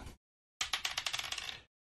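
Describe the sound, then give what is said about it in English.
A die clatters onto a hard table and character sheet, first showing a 20 and then turning to a 2: a quick initial tap, then a pause and a string of about nine bright, rattling bounces that speed up and fade out. No one speaks. “Oh, was a 20, and then it hit the table and or hit the character sheet and turned into a 2, so that's an 11.”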